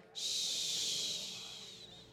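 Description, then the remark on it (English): A single soft, sustained shush made by a voice, a steady breathy hiss that starts abruptly and fades gently over about two seconds, with no talking. “You can shout, be quiet, but if you actually just quietly go shh, It quiets the crowd more.”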